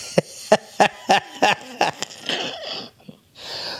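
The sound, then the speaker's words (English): A coughing fit: about six harsh, hacking coughs in quick, even succession, then ragged, raspy breathing and throat noises, ending with a long wheezy inhale. “Coughing like fucking Keith Richards over here.”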